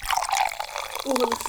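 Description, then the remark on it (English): Fizzy Grape Fanta soda pours steadily into a cup, a bright splashing hiss with rising gurgling tones as it fills, lasting about a second and a half. “I'm gonna pour Ashley some”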